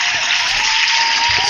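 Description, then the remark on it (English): Sustained audience applause, a dense, steady wash of many hands clapping at a fairly loud, even level, with no voices standing out. “crowd likes that one.”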